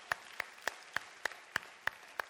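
An audience claps hands in unison for the Lord, eight sharp claps in a steady, brisk rhythm of roughly three per second, with no talking over them.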